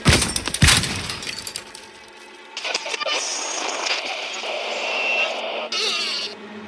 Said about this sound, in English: He pulled out a hammer from his toolbox and smashed it against the radio, leaving plastic shards all over his workbench. Leave me alone! He drove the hammer into the radio harder and harder.